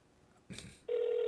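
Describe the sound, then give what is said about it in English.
A short rustling burst, then a steady electronic telephone tone kicks in and holds loud and unbroken, like the ringback heard on an outgoing call. No one speaks. “How many rings does he get?”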